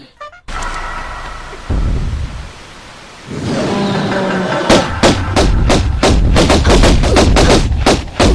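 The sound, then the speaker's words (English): Video game gunfire and the heavy thumping footfalls of the surprise T-Rex in the Lost Valley, the third level of Tomb Raider, over a rumbling noise bed, the shots turning into a rapid, loud burst of repeated blasts in the second half. “Well, it's the footfalls of the surprise T-Rex.”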